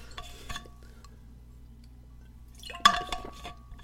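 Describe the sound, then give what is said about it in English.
Quiet glassware sounds as water is added to a glass: a light clink, then a short stretch of liquid trickling with a sharper glassy clink near the end, all fairly soft, with no talking. “Oh boy, let me just add some water here.”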